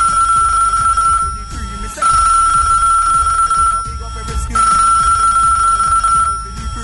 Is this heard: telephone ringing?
yes